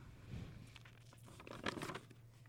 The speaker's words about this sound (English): Was your tease the crumpling of the paper? Is that a garbage choice?